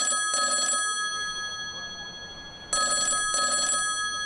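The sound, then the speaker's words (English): A telephone ringback tone heard through the line of an outgoing cell phone call: two pairs of short electronic trills, a pause of about two seconds between them, over faint background hiss. “Leaving Squiggs' studio, Sandy takes out her cell phone and makes a call.”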